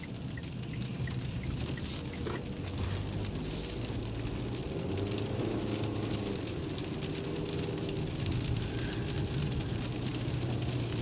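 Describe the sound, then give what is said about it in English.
A car engine runs steadily, its low rumble rising and dipping unevenly as it's revved, with a rough, sputtering edge and no voices. “Why's your car making a jump sound?”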